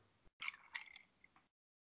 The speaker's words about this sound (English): Hey, I can hear you fucking crunching your ice, you son of a bitch.